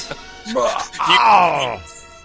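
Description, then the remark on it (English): A single voice lets out a loud, strained wail that rises and then slides downward over about two seconds, imitating fans screaming, with a brief grunt just before it. “And you're going to hear the screaming from wherever. It's going to be like this.”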